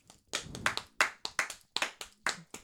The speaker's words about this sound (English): Yay, clap.